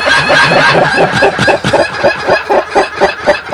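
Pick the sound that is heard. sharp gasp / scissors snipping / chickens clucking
chickens clucking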